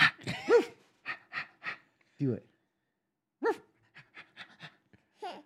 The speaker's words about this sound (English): Roof. You hear that? Yeah, yeah. I heard the dog.